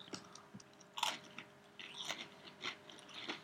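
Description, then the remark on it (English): Crisp crunching of an Oreo cookie being bitten and chewed, with a sharp bite near the start followed by a run of irregular crackly chews, no talking. “It's crunchy. I'm getting that.”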